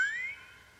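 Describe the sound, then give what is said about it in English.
A single short boing sound effect, a bright ringing tone that bends upward in pitch and then fades quickly, heard alone without any talking. “Boing.”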